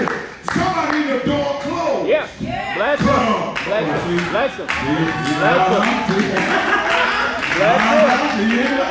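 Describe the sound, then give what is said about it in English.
A large crowd shouts praise and cheers energetically, many overlapping voices rising and falling, with scattered hand clapping mixed in throughout, loud and continuous for several seconds. “Let me check the praise meter. Let me check and see if the sound went down.”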